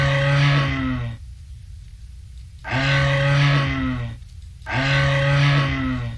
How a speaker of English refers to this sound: That is a moose. It's the largest of the deer species, and it's found in North America, in the Baltic states, Russia, and Scandinavia. They're solitary creatures. They really don't form herds.